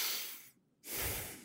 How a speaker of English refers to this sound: consciously breathing through your nose